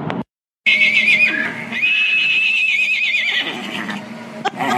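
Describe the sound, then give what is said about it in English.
A miniature horse named Liam, from North Fork, California, lets out a loud, drawn-out whinny with a shrill quavering tone lasting a few seconds before trailing off. “And here is a recording of my mini Liam giving Chili a run for his money.”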